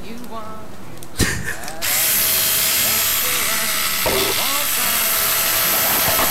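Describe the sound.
A Black & Decker electric power drill whirs continuously, starting after a brief clatter and holding a steady high-pitched whine with slight pitch wobbles as it bites, while a voice murmurs faintly underneath.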